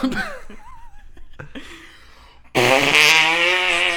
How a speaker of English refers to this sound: Ouch, ouch, ouch. He's gonna fart. Ouch. He's gonna fart.